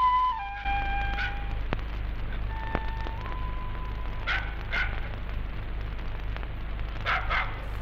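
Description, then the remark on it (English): A dog barks in a village, two quick pairs of barks spaced a few seconds apart, over a steady rain-like hiss, with thin whistling tones sounding early on. “his stricken mother turns and passes through the doorway back into the home where she will now live alone in an eerie silence broken only by the barking of a dog.”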